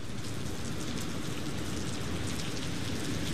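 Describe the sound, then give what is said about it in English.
Heavy rain pours down steadily outside the courthouse in Paris, Texas, a dense, continuous hiss of drops splashing on hard surfaces, with no voices and no pauses throughout. “We walk out of the Paris, Texas courthouse into the pouring rain.”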